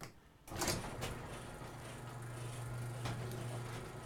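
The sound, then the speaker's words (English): A large shop door slides open with a rolling, rumbling scrape that starts abruptly and continues steadily, a low hum running underneath as it moves along its track. “I'll go ahead and open that shop door, too.”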